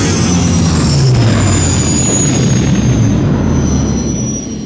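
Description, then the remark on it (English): The giant engines of a spacecraft roar loudly and steadily, kicking up large clouds of dust, with a thin high-pitched whine riding over a deep rumbling wash of noise that eases slightly at the very end. “The giant engines of the spacecraft begin to whine, kicking up large clouds of dust.”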